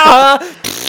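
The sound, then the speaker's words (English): A short, buzzy fart noise made with the mouth, a loud voiced raspberry lasting under half a second, followed by a brief breathy hiss. “He could also just farted and been just that guy.”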